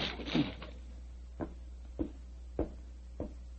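A locked door takes repeated heavy shoulder blows from people forcing it open: a loud scraping crash, then four dull thuds at steady intervals of about half a second, with no talking.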